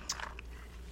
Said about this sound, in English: Sorry, I took another coffee sip.